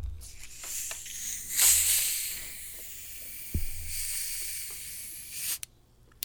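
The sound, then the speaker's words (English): Soda fizzes steadily as it is poured, a bright, sustained hiss laced with tiny crackling pops and one dull knock midway, before the fizz cuts off abruptly near the end. “Oh, I think I'm getting much more bubbles in the pour.”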